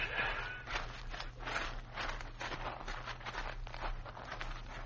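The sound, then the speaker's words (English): Footsteps of an approaching Apache crunch along at a steady walking pace, each step a soft, scuffing thud, over a low continuous hum with no voices. “One of the Apaches is coming this way.”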